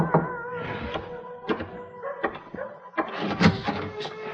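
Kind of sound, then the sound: household object, knocking on a door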